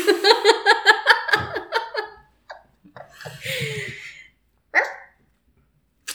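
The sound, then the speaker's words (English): A black dog named Rue gives a quick, loud run of about eight high-pitched yappy barks in the first two seconds, followed by quieter scattered noises and one more short, sharp bark near the end. “Do we know any black dogs? Rue? Yep.”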